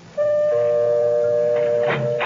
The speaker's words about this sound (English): Well, all right. I came up the walk and rang the doorbell.